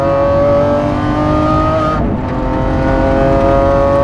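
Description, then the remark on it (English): The engine of a 2020 Lamborghini SVJ being driven roars and accelerates steadily through a 115 mph turn, with a brief dip around a quick gear shift midway before the revving climbs again, continuous for about four seconds. “I am driving a 2020 Lamborghini SVJ. This car, watch this.”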